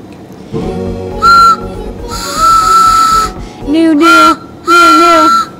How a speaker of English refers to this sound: It's a train whistle. Kind of. All right. The holodeck malfunction. There is a train that just came through.